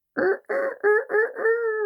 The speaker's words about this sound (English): With the hens next door, they would talk through the wall. Peep, peep, peep, peep, peep, and then, cock-a-doodle-doo! Swear. No way. Another rooster.